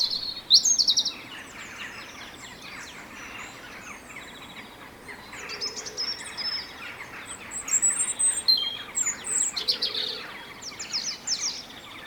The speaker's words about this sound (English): Here's another recording of a different robin. They look so jackdaws. They're jackdaws in the background.